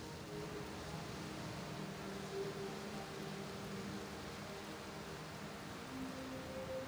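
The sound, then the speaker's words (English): Steady, unbroken rain hiss falling on a small cottage after dark, at an even level, with faint low humming tones underneath and no voices. “It's been dark, but rain has still been coming down this whole time.”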